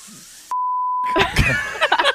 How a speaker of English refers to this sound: What did he say? Please don't beep out that F word. I've never heard it said like that